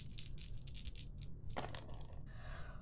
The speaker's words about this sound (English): Okay, so I have 4 dice. I'm rolling 4.